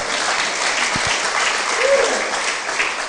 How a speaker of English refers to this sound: Round of applause for our willing volunteer.